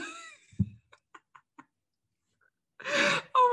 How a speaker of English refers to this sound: Sorry, I'm just like coughing.